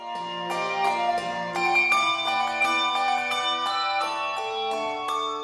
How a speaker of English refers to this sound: Which bell sounds better, the one with the tang or the one without? This is the Sonos Handbell Ensemble, one of the few choirs that mixes Schulmerich and Malmark bells.